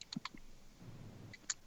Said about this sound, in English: Somebody's typing.